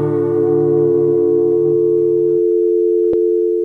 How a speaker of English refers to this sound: We'll call you up on your telephone. That dial tone though.